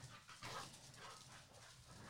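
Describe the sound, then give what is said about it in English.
Dogs barking and yipping in a few short, scattered bursts, fairly faint, with a steady noisy background and no one talking. “Dogs.”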